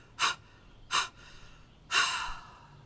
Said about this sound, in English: For example, I do this thing where I will take two long breaths and one short breath, or maybe the other way around, but it goes like...